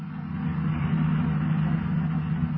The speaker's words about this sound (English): Meanwhile, the boys in the police cars approach the hill that was indicated on the map.